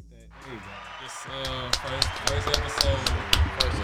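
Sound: applause sound effect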